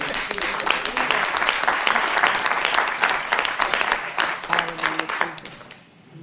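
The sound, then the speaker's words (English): A roomful of people applauds steadily in a hand clap for God, dense overlapping hand claps filling the space for several seconds, with a few voices mixed in before the clapping thins out and fades at the end. “Let's give a hand clap for God.”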